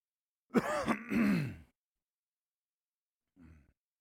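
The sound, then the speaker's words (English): A person clears their throat loudly in a rough, drawn-out rasp lasting about a second, then after a short silence gives a much briefer, quieter second clear. No talking. “Let me just warn you ahead of time, if I end up clearing my throat too much, I'm sorry, I apologize.”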